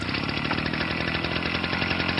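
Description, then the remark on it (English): A leaf blower runs steadily, its loud motor droning with a dense, rough whine and a faint rhythmic pulse, with no voices over it. “I'll play the leaf blower, which I wish had been playing during your statement.”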